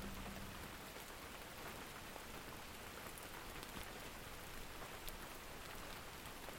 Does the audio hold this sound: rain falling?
yes